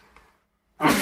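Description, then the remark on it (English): A voice murmurs briefly, then after a short silence a sudden, loud, breathy sneeze bursts out and carries to the end. “Excuse me. Bless you. Excuse me.”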